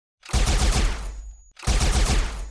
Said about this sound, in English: And then the Azure Court soldiers turn and open fire on the rest of the administrators.